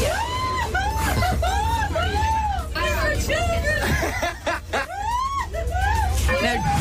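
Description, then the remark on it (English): A group of people scream and shriek over and over in rising-and-falling waves on a kids' ride called Crazy Bus in the junior section of an amusement park, with a steady low rumble and crowd noise underneath. “That's the kids' ride. A kids' ride in the junior section called Crazy Bus.”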